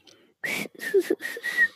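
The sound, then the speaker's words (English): Pet birds whistle and chirp in four quick, raspy bursts, each with a bright high whistle running through it, loud and unaccompanied by any talking. “Shout out to the birds. Say shout out, birds.”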